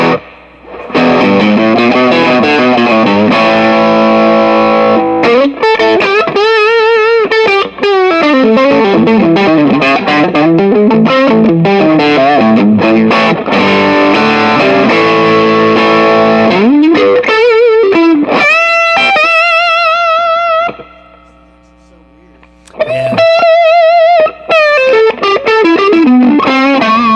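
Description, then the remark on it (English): An electric guitar, a Strat played through distortion effects, plays loud, sustained bending lead lines and chords with a thick, saturated tone. It pauses briefly near the end before resuming, and no one talks over it. “I can tell I never play strats.”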